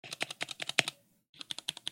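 Rapid, crisp keystrokes on a 60% gaming keyboard, a quick burst of clacks, a brief pause, then another run of typing, fairly loud with no voices.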